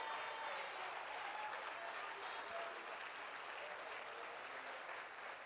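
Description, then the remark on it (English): An audience claps hands in praise of God, a dense, sustained burst of applause, loud and steady for several seconds, the individual claps blurring into a continuous roar with no voices standing out. “Somebody ought to clap those hands and give him praise.”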